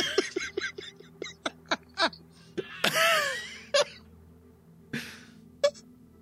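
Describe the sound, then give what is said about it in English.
Heavy, labored breathing of a man: a quick series of short, huffing breaths, then a long, wheezing gasp and a few more strained pants, with no talking. “I don't know, but he's so, breathing really hard.”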